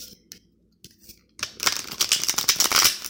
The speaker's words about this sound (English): I'm shuffling the cards and getting them ready to go.